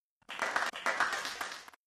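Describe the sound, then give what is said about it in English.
A burst of studio audience applause in a studio in Los Angeles, California, dense overlapping claps forming a steady roar for under two seconds, with a brief dip midway before swelling again and cutting off abruptly. “The applause just seems to get louder every single week.”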